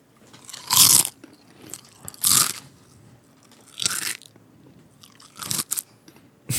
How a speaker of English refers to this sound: Is he eating the dirt? Oh, it's just so crunchy. It would be crunchy.